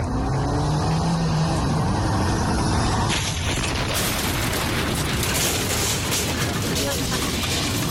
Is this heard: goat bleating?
no